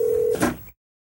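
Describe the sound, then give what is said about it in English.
A steady electronic telephone tone hums for about a third of a second, then breaks into a brief burst of clicky noise as the line connects, cutting off abruptly into silence. “I think we're calling somebody.”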